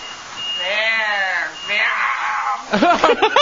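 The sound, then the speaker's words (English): A voice imitates a King Kong yell: two long, loud, wavering roars in a row, followed by a burst of choppy, lower grunting moans at the end. “that moan at the end, that yell, that Kong yell is the best.”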